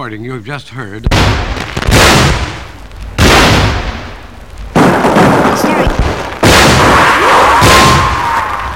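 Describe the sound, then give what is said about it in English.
Four loud blasts from a muzzle-loaded bronze cannon fire one after another a second or two apart, each a sharp boom that rolls away in a long, echoing rumble. A brief warbling tone comes just before the first shot. “The stereo recording you just heard of a muzzle-loaded bronze cannon”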